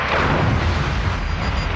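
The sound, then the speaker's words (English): A heavy, rumbling explosion of a direct hit on deck 9 of a starship, with a deep booming low end and a crackling wash of noise, sustained and loud for nearly two seconds with no voices. “Direct hit, deck 9.”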